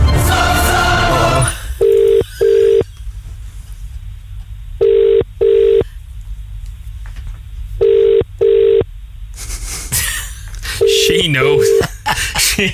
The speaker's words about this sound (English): Right, here we go. I'm about to dial Jordan Humphreys from the Q Radio Afternoon Show.